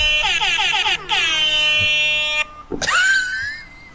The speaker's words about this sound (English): We'll have less air horn